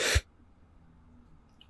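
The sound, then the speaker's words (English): A single sharp sneeze bursts out right at the start, then gives way to a quiet background with faint low noise. “I had to sneeze there.”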